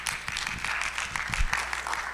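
A crowd claps steadily to welcome a pastor who is about to come and share, a dense patter of many hands blending into a continuous wash of applause at moderate loudness, with no voices over it.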